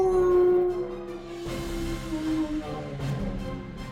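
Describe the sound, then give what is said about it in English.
A person lets out a long, drawn-out wolf-like howl, loud, the wavering pitch sliding and breaking before a second rougher cry near the end. “He turns into a wolf every night.”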